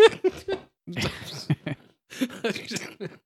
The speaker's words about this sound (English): I shouldn't laugh, particularly as I'm coughing right now, but...